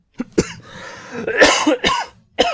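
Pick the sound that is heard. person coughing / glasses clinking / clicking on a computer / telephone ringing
person coughing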